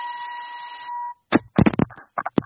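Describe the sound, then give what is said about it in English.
A single loud electronic warning beep, like a truck backing up, holds one steady mid-high tone for about a second, then cuts off and gives way to a few sharp, choppy bursts of noise. “It sounds like the Brinks truck is backing up to offer us a new deal for our podcast.”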